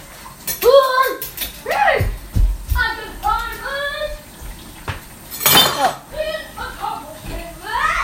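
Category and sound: household object, dishes clinking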